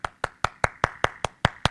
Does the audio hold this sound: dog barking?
no